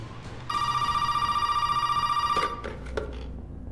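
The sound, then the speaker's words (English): A telephone in a video game clip rings once in a loud, steady burst lasting about two seconds, then cuts off, leaving faint low background noise and a few soft clicks. “That phone should have sounded familiar.”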